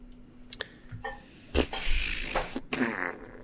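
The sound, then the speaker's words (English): A loud farting noise sputters and buzzes for about two seconds after a few quiet clicks, with no talking over it. “gonna make more farting noises on our podcast.”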